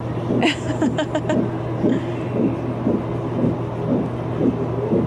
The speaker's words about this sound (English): And she was like, the heartbeat is so strong and amazing. It sounds much better than last time. And you want to hear it again?